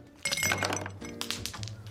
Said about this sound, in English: fill a tall glass with ice, the way children fill our lives with so much joy.